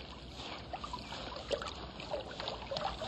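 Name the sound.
flowing brook water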